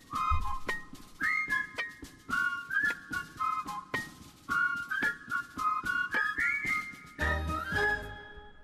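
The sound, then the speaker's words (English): A whistled melody carries a bouncy tune over a backing music track with steady percussive beats, phrases rising and falling clearly for several seconds before a final held note. “I really want to whistle then.”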